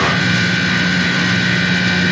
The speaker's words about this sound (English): Did the dog just turn on the coffee machine? What's happening? How did the coffee machine just turn on?